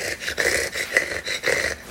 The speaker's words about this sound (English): Sound like a panting dog.